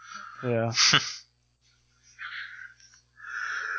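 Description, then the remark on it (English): A drawn-out yawn at night: a voiced groaning stretch with a sharp breathy intake, then a quiet pause followed by two soft, airy exhales. “Oh, well, it's that time of night where I started yawning.”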